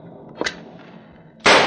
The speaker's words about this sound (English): Those shots came from the head of the stairs, amigo.